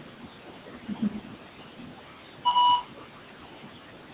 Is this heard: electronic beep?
yes